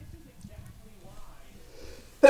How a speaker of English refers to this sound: Bless you. … over there.